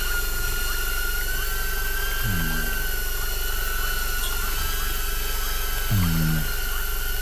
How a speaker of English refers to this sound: I'm going to ascend this drone up to see if I can get an eye on where the loggers made off to.